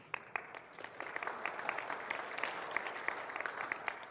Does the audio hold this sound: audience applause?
yes